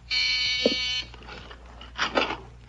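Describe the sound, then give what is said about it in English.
A front doorbell gives one harsh, steady electric buzz lasting about a second, rich and raspy in tone, then cuts off, leaving faint rustling and shuffling sounds. “That's the front door.”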